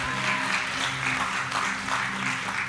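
An audience claps steadily after a prayer for nearly three seconds, a dense, even patter of many hands with no pauses, over a faint low hum.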